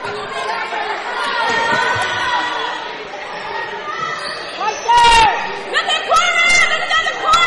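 Coaches yell loudly from the sideline over the steady murmur of a gym crowd, with sharp shouts standing out, the loudest burst about two-thirds of the way through, amid occasional ball bounces.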